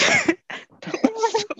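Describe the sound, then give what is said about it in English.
A loud, harsh cough, followed by a few rougher, throaty coughing bursts in quick succession, with no talking. “And I looked at my face in the corner while I was coughing.”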